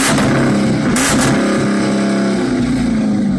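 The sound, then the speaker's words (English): The engine of a 1973 Dodge Challenger, rebuilt from two junked cars, revs with a deep, throaty, lion-like growl, loud, its low rumble rising and holding steadily for a few seconds with no voices over it. “My brother-in-law bought two kind of junked up '73 Dodge Challengers, and he's a motorhead, and he put them together and made this beautiful fucking car. It's a growl like a. It's like a lion.”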